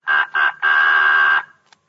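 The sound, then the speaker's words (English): A voice imitates a duck, giving two short nasal quacks and then a longer drawn-out one, loud, with no other sounds around it; an imitation of the pet duck's quack that Clarence Nash did in cartoons. “he appears as the duck. There's like a duck that they had that's a pet duck, and he does the quack, quack on there.”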